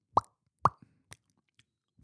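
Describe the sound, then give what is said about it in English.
A voice imitates the popping noise of a shoulder thought to be dislocated with sharp mouth pops: two strong ones half a second apart, a weaker one, then a final loud pop after a short pause, with no words spoken. “So in reality, I thought I dislocated my shoulder, and then because you heard a popping noise.”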